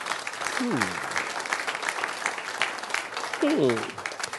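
An audience claps hands in a steady, dense patter that lasts the whole stretch, with two brief rising-and-falling vocal shouts breaking through early and near the end.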